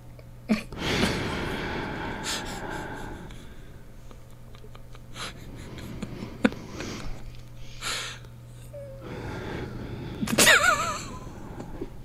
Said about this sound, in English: What the fuck are you doing? Breathing. Oh, okay. That's fine. I wasn't entirely certain what that was. Now I understand.